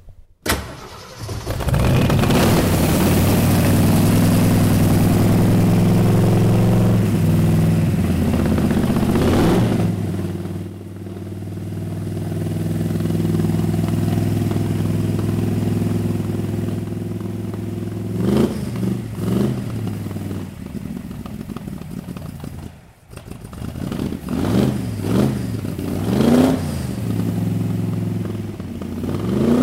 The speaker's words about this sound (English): Race car mechanic Randy Sharp says that's a race car sound. That definitely hits on all eight.